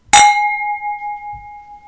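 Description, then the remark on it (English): A single bright clink of wine tasting glasses touching in a toast, followed by a clear ringing tone that sustains and slowly fades over nearly two seconds, with a faint soft thump partway through. “You'll notice a slightly different tone to our glass ring as we're using our tasting glasses.”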